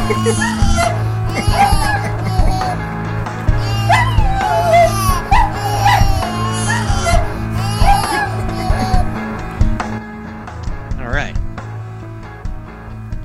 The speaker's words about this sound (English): or was he singing with the dog?